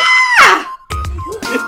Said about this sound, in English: That's me yelling. …, what do you yell? There's a lot to unpack in that scream.